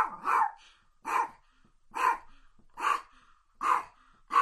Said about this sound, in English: And let's see if this year we can get Paco to bark for us. Paco, you want to bark?